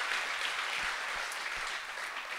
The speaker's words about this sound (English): And thank you for the applause.